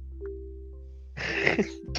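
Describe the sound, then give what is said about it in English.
A man's harsh, raspy cough bursts out after a quiet stretch with a low steady hum, lasting about half a second, followed by a brief second hack right at the end. “he just coughed.”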